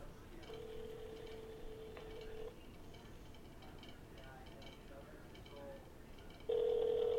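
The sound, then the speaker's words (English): An outgoing phone call to an invited guest rings without being answered: a steady two-second ringback tone, a long silent gap, then the tone starts again, clear over faint background murmur. “Let's see if this guy's going to answer.”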